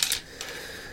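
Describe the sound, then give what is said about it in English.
A few quick, bright clicks of pennies being set down on a table as game tokens, four pennies in all: two clicks close together, then a third a moment later, crisp, with no talking. “I've decided that I've got four spirit, which represented I have here with four pennies.”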